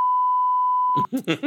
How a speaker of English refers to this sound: This has got to be a record for beeps for ….